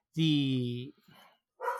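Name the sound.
dog barking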